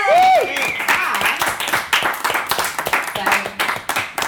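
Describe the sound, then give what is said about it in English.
A live audience breaks into applause for a speaker, with a steady wash of clapping that holds for several seconds, plus a brief whoop or cheer at the very start. “Big round of applause”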